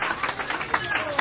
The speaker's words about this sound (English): Can the church say amen? Will you clap your hands unto Jesus and just give him a shout? Hallelujah! Thank you, Jesus.